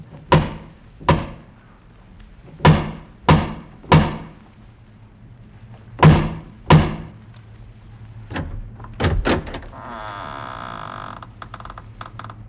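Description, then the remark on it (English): Several heavy, resonant knocks strike a large wooden door in uneven clusters, followed by a creaking, grinding sound as the heavy door swings open. “strode across the gravel and up to the massive wooden portal, the door of the House of Usher”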